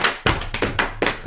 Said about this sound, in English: That's not clapping. That's his feet actually stamping across the floor. Yeah, it's my feet.